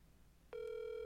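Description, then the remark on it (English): A phone call rings out: after a brief quiet, an electronic ringback tone starts abruptly and holds steady and clear to the end, with no voices. “Oh my God, he's calling him.”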